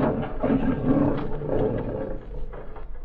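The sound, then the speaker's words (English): A deep, rumbling roar of a Bengal tiger named Prince Rajput rolls on for about three seconds, loud, with a steady low growl underneath and no voices. “Tiger. Bengal tiger, name Prince Rajput, do not stir.”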